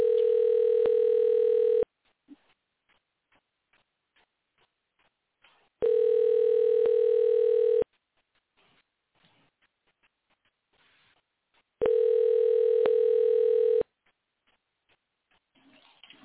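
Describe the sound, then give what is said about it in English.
An outgoing phone call's ringing tone: three steady, buzzy two-second rings separated by roughly four-second pauses of near silence, with faint small rustles in between. “I just texted him and let him know I'm calling him.”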